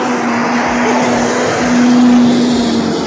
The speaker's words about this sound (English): Actually, there's a giant bus going by.